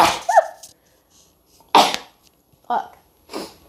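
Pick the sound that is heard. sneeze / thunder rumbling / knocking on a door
sneeze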